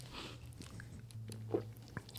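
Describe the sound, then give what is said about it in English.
Quiet sipping of beer and wet mouth sounds from a few people, with a couple of soft clicks near the end over a low background hum; no one speaks. “All right, everybody sip.”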